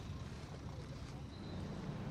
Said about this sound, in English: there's an entire fleet of idling buses that goes the length of this parking lot here